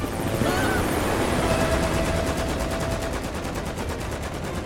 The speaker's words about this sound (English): Miss Ronnie's helicopter! That's his call sign on the tail! They're shooting at the Indominus!